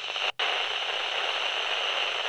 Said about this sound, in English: And he hands you a phone. You've got a call. "Hello?" But there's a lot of static on the line.